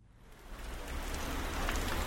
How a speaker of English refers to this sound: Rain pounds the sidewalk of central Seoul on a recent morning.